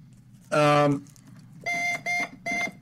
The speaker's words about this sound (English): It's a cute curiosity piece. Works on one D cell battery with a little buzzer on the inside.